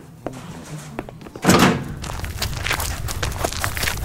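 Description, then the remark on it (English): A few faint knocks and clicks, then a door swings shut with a loud, heavy thud partway through, followed by a steady rustling background noise. “Everyone else, stay inside and close the doors behind us.”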